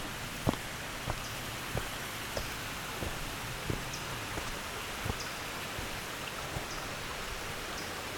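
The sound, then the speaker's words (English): A tiny stream with a little waterfall trickles steadily, a soft continuous wash of water broken by occasional sharper drips and splashes, with no voices. “It's a trickling stream here.”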